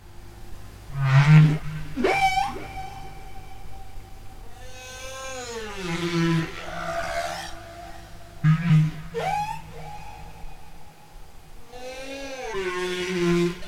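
Whale calls recorded by Mark McDonald, a series of gliding moans and high squeals that rise and fall in pitch, with long ringing tails from natural echo, as if echoing through water. No one speaks.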